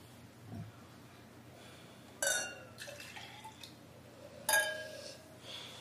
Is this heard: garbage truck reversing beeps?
no